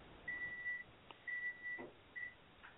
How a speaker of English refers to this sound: I think there was, like, some sort of beeping or something. Oh, there was probably beeping.